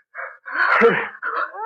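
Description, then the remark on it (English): A werewolf howl rises in three rough, wavering bursts from inside a room, the long middle one loudest and most strained, ending on a thinner upward moan. No one speaks. “That howled again. That's coming from our room”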